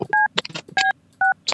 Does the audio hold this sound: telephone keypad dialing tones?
yes